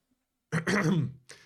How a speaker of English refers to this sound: You clear your throat.